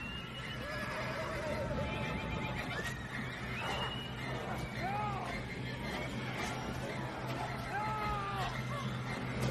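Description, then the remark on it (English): A horse neighs and whinnies several times in shrill, wavering bursts over a steady, rumbling background noise, with the calls loud throughout. “Yeah, it was that horse.”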